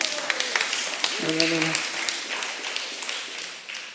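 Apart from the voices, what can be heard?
audience clapping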